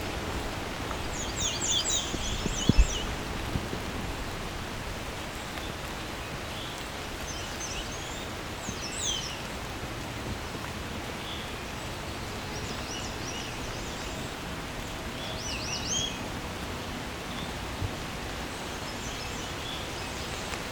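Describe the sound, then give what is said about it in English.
A scarlet tanager sings short, burry phrases in an unusual pattern, like the first note of a yellow-throated vireo, repeated every few seconds. The bird is fairly faint over a steady rustling, hissy outdoor background. “never heard a scarlet tanager do that before.”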